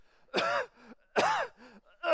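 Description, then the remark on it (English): A voice imitates a coughing fit after taking a big drag off a cigarette: three loud, harsh, rasping bursts, each followed by a short wheezy intake of breath, without any words. “Takes a big drag off his cigarette and starts coughing.”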